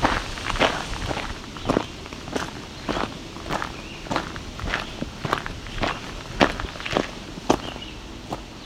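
Steady footsteps walk at an even pace back into the woods from a trail, roughly fifteen crunching steps over leaf litter and brush, with no voices and a soft outdoor hiss underneath.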